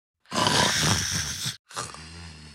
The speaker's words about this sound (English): With our new body shape, we could also snore, unfortunately, which wasn't really possible before.